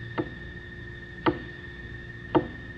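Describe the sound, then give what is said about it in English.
Three sharp knocks sound in reply at a séance, one at a time at a slow, even pace, each about a second apart, over a faint steady hum with no voices. “Please knock twice for no, thrice for yes.”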